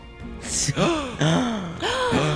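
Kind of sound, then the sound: human body sound, gasp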